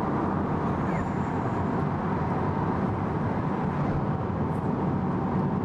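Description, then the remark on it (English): A Tesla Model 3 electric car cruising at about 100 km/h, heard from inside: a steady, loud rumble of road and wind noise that holds constant throughout, with no engine note and no voices. “Once you go and put your foot down now, it's 100k here.”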